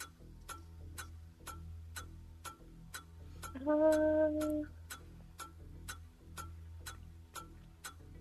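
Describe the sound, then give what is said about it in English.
A trivia game timer ticks steadily, roughly two to three crisp, sharp ticks per second, with a brief, wavering humming tone rising over the ticking about halfway through before it fades. “Timer's going.”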